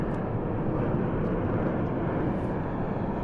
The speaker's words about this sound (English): So many airplanes.